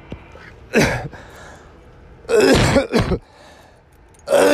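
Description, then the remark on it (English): A person coughs and clears their throat in front of a camera in several harsh bursts, with short quiet pauses between them and a final cough at the end. “I thought I'd cough in front of the camera a little bit.”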